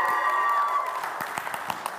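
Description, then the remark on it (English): A studio audience, the Fryathon crowd, clapping in the room: a dense, steady wash of applause with a few sharper individual claps standing out, moderately loud, lasting the whole two seconds. “We got the Fryathon crowd in the room with us today.”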